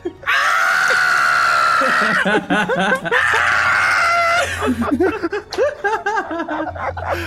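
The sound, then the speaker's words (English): A voice imitates the shrill, sustained screech of a character being dragged against a stone wall, in two long bursts, broken up by bouts of snickering laughter, all loud and strained. “And then you literally hear this screeching.”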